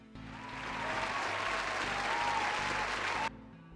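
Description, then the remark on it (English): A burst of clapping and cheering from a crowd swells quickly, holds steady for about three seconds, then cuts off abruptly into silence. “Most delayed applause in the world.”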